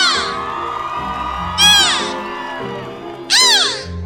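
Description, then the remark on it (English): Beluga whale calls: a steady bed of high, squeaky whistles broken by two loud bursts of rapid, sweeping chirps, one in the middle and one near the end. “Beluga whales are often called the canaries of the sea because of the songs they sing and the chirps they use to communicate.”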